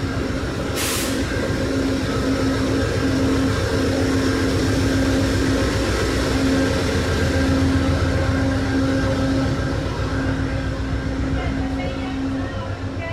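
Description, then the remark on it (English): Two diesel locomotives, numbers 176 and 163, idle at a station with a steady, heavy low rumble and a sustained mid-pitched engine hum, loud and continuous throughout, with a brief hiss of air near the start. “So we've got locomotives 176 and 163 from the fleet idling away here at the station.”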